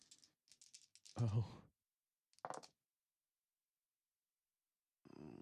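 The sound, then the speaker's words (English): A handful of small six-sided dice clatter and rattle across a hard surface in a few short bursts during a Dungeons and Dragons game, with a brief vocal sound mixed in and quiet gaps between the rolls. “I'm gonna roll dice. This many D6s because it's all I have.”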